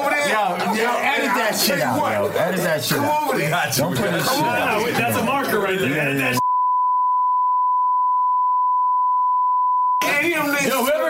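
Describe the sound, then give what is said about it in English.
A phone ringtone plays loudly, a busy melodic tune full of voices, then cuts to a long steady high beep for several seconds before the tune briefly returns. “Your ringtone made me sad.”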